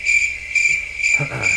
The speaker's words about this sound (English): Give me the crickets.